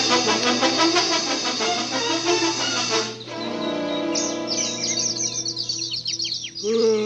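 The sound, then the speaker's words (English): A dense, agitated chorus of many birds chirping and calling at once, loud, with rapid overlapping tweets and sharp squawks continuing throughout. “They're acting so strangely today. They're making me nervous, and my heart is weak.”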